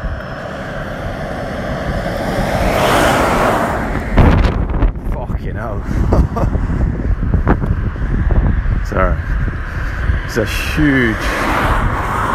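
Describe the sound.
A huge truck carrying something like a 10-ton crane on its back roars past, a loud, rumbling wash of engine and road noise, followed by heavy gusts of wind from its wake buffeting the microphone, with a person talking over it.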